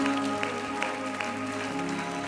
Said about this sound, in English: I wish you'd keep clapping like you believe somebody's coming for a life change.